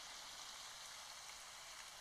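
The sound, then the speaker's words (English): Steady, hissing rainfall from the Calm nature-sounds app played on a phone pours without a break, a dense wash of fine droplets at a soft, even level, with no voices or other sounds. “They have one that's the rain.”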